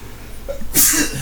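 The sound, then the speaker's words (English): A single loud, explosive sneeze bursts out after a brief quiet intake of breath, with a sharp hissy burst trailing off quickly. “Whew, that's a sneeze and a half.”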